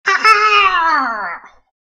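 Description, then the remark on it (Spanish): A voice imitates the squawk of a strange winged creature, meant to sound not exactly like a bird and not like a roar: one drawn-out, strained, harmonic-rich cry about a second and a half long, gliding slowly downward in pitch before cutting off. It is loud and stands alone. “Que pese al graznido que acabo de sonar, o sea, que acabo de hacer, la idea es que no suena exactamente a un pájaro.”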